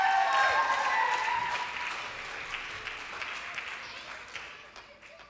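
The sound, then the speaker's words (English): A crowd bursts into applause and cheering for a team, with shrill high-pitched voices rising over dense clapping that gradually fades as it goes on. “I think we should give them Morph a big cheer.”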